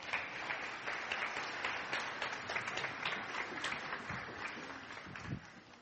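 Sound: applause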